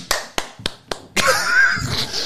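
Five sharp hand claps at a steady, even pace, each crisp and short, followed by a continuous, noisy wash of sound.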